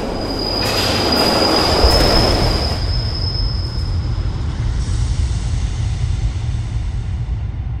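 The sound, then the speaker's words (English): A train thunders on the tracks, its wheels squealing in a sustained high-pitched whine over a heavy low rumble that swells early, then eases into a steady roar. “Then, just as the train is about to burst into the station, a sudden gut-wrenching shove in the middle of your back sends you flying out onto the tracks in front of the oncoming train.”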